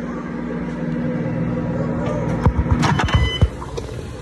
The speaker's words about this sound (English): Listen to that bacon frying.